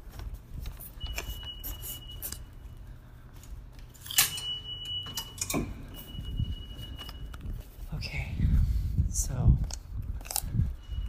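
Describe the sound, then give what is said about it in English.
Subway station ambience while someone descends underground into the subway: a steady low rumble with scattered clicks and clattering, a thin high whine drifting through, and a swell of heavier rumbling near the end. A voice speaks briefly into a phone. “I feel a little self-conscious just talking to my phone down in the subway.”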